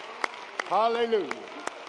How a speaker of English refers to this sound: Let's give our youth a hand clap. Come on now. Oh, Lord. Oh, Lord. Will y'all stand? Stand, stand. Come on, let's give them a hand clap.